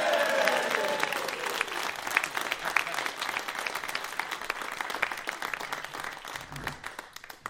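A crowd applauds steadily, dense overlapping claps filling the whole stretch, with some cheering voices rising early on before the clapping continues at an even, lively level.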